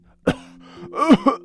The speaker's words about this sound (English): And the cough continued.